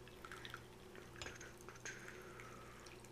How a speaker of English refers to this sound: I think our tea has probably steeped long enough. Perfect. So we'll pour some tea. It's very hot. Be careful to not burn your mouth.